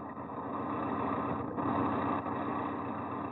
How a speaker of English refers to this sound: Tonight's file opens on a lonely mountain road in a northwestern state. The blackness of the night breeds quiet, the only sound for miles around being made by an ancient car wheezing along the highway.